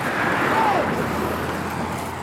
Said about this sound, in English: As we picked up trash together, I got a taste of it when a truck whipped past with their window down. Whoa. Yeah, watch out.